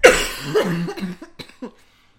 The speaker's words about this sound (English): And my coughing is penance for my rants.